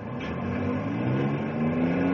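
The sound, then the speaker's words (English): A heavy truck loaded with logs, bound for the mill, revs its engine loudly and pulls away, its deep droning pitch climbing steadily as it gathers speed, with no voices. “Truck's ready to roll. Well, tell the driver to take off”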